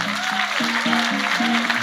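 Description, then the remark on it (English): An audience claps their hands in praise of God in a dense, steady wash of applause, with a low sustained musical tone, like an organ, holding and shifting pitch underneath. “Come on, clap your hands one more time.”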